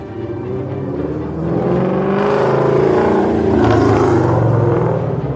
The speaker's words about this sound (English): On top of which, the car is so loud, and it is really weird because 99% of cars are electric. It might have been like 7 years ago, the last time I heard a gas-powered engine.